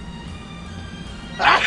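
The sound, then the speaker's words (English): A single short, sharp sneeze bursts out near the end, loud and breathy, after a stretch of low, steady background hum. “Bless you.”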